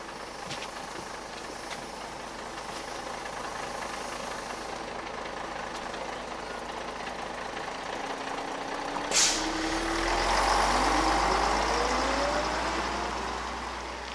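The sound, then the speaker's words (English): The engine of a bus packed with people, bound for Krivorivnia, idles with a steady low rumble, then a short sharp hiss of air brakes cuts in before the engine revs up with a rising whine as it pulls away. “Finally, we found the bus, packed to the brim with people.”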